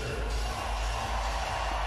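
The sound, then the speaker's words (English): An ice hockey arena crowd, on its feet, applauds a goaltender protecting a six-goal lead late in the third period, a dense, steady wash of clapping and crowd noise that holds at an even, fairly loud level throughout, with no one speaking over it. “And everybody on their feet giving him a big round of applause as the face-off wasn't done correctly.”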